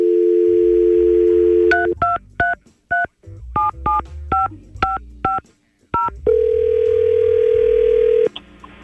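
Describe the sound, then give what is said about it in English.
A steady dial tone gives way to a quick run of about a dozen touch-tone beeps as a man's phone number is dialed, then a long single ringback tone sounds, all clear with no talking. “Let's try and call him.”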